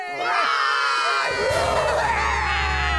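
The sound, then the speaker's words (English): A group of voices cheers and roars together in victory after finishing building a fortress, one loud, sustained burst of overlapping shouts, with a deep rumble building beneath the yelling partway through. “But this is a victory. We need to roar.”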